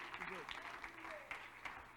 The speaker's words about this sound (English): Come on, would you stand to your feet and clap your hands right now and thank him for his faithfulness?